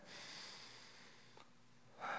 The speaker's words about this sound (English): If you guys would do this with me, just put your hands out, palms up, close your eyes, just a posture of surrender. Take a deep breath.